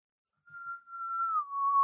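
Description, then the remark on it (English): Someone whistles the Negan whistle, a short melodic phrase: a clear, steady note that slides down to a slightly lower pitch and holds. Fairly soft, with no talking. “Is that you calling your dog? No, it's the Negan whistle.”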